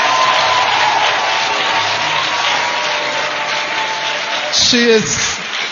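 An audience claps steadily for a bishop's wife who is present, a dense, continuous wash of applause lasting several seconds, with a short rising vocal whoop or cheer cutting through near the end.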